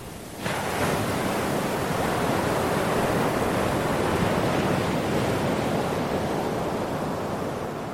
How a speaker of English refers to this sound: The waves are coming up 4 or 5 feet over where you're standing